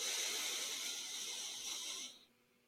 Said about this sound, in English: You breathe in for 4 seconds through your nose. This is important, breathing through your nose, not your mouth.